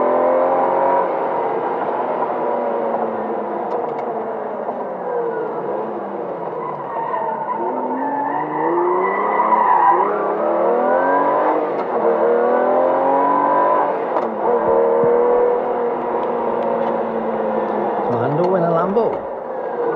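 A bright green Lamborghini sports car's engine revs hard in rising and falling sweeps, mixed with screeching tire skids, loud throughout a continuous twenty-second run, as it drives around town past the town clock and bus bays.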